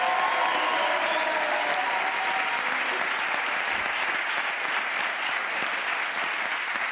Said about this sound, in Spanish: Venga, no os canséis de aplaudir.